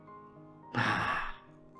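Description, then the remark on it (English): A single quick, audible breath demonstrating shallow breathing, breathy like a short sigh or gasp, lasting about half a second against a quiet background with no talking. “I have to show these actions, okay? It's not that you do these kind of actions while breathing.”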